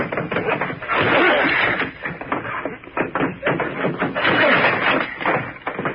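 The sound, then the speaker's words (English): Heavy, rapid banging and thudding against an old wooden door on the land side of a boathouse as two people force it open together, with dense, clattering impacts and creaks filling several seconds, loud. “We'll probably have to force that old door.”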